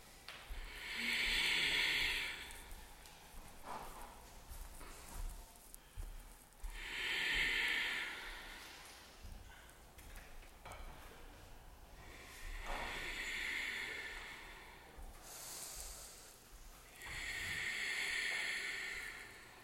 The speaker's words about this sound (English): Maintain the flow of ujjayi in through your nose, out through your nose.